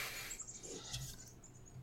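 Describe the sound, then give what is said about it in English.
About four birds fight in a bush next to a window, giving quiet, high-pitched chirps and squeaks in rapid, overlapping bursts throughout, with no one speaking. “It's like four fucking birds having a fight on the bush next to this window.”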